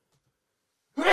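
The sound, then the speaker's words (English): After about a second of silence, a single sneeze bursts out abruptly: loud, breathy and airy, with a harsh rush of noise cut off at the end. “Bless you.”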